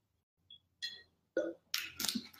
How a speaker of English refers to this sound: Okay, guys, I'm going to take a sip of my kombucha, and then we're going to get into tip number 3.